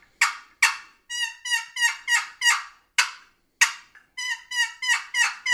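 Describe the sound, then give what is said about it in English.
A turkey box call rings out with sharp, excited cutting notes mixed with rhythmic yelp sequences, loud, about a dozen raspy, high-pitched strokes in quick bursts with no talking. “So an excited cut, always throw yelps in with it.”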